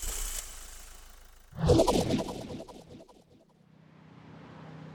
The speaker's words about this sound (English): Can we please rev the engine?